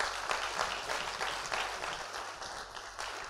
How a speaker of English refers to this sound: Clap your hands if you're learning something good.